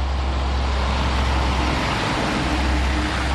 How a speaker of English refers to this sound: It's a crisp day in Inez, Kentucky. Trucks hauling coal, gray-stained rigs known as coal buckets, wend their way up a narrow country road in regular intervals.